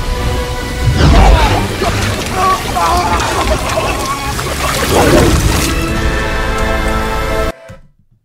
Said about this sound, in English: The protagonist of this children's movie just said, you're forgetting one thing. you're made up of 65% water. And then she sucks all the water out of this dude's body.